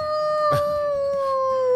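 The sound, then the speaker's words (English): A sustained, wolf-like howl holds one steady pitch with bright overtones for nearly two seconds, loud, with a brief noisy rasp about a third of the way through. “Sounds more like a wolf.”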